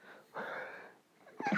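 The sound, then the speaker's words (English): A single sneeze, a sharp breathy burst lasting about half a second, followed by a brief pause and the start of a voiced sound. “Sneeze. Bless me.”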